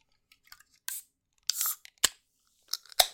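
A 440 ml can of Eddie Line Brewery Summer in the Citra beer (6.1%) being cracked open: several sharp clicks and snaps spread over a few seconds, with one brief burst of bright, hissing fizz partway through. No one speaks.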